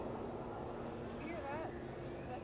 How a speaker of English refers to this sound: You hear that? That's that pontoon boat. Is that pontoon? Yeah. Yeah, we are not at a disco club, just so you know. That's the pontoon on the other side of the island. They have got a killer sound system.